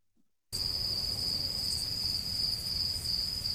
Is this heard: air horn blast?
no